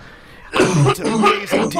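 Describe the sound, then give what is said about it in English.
After a brief quiet moment, a person coughs several times in quick succession, the harsh, raspy bursts fairly loud, with a throaty rumble between them. “is coughing over there too.”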